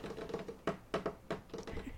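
Rapid clicking of keys as someone types a message, fairly quiet, with a few sharper taps standing out in an uneven rhythm.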